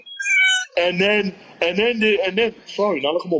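A cat meows several times in quick succession, loud, its drawn-out, wavering cries rising and falling after a brief high-pitched opening call.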